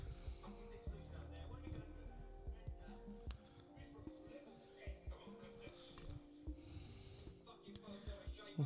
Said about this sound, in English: She's about to have a panic attack. Is she? What makes you say that? Because she's hard of breathing.